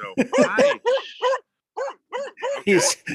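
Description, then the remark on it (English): A male dog barks in a rapid string of sharp, yelping barks, pauses briefly, then lets out several more loud barks. “I have someone objecting to my presence here. He's disagreeing with my opinions already.”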